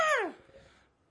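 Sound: imitated scream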